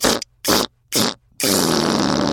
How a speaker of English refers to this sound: A huge stinky cannonball of a fart shot toward Lion. This was a smell stinkier than Tiger Cat or Gorilla's farts.